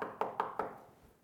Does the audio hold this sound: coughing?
no